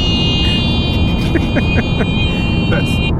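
Steady low road rumble fills the inside of a moving car loaded with passengers and Freya, a six-year-old golden doodle, with a thin, constant high-pitched whine above it and a few brief, faint murmurs and clicks.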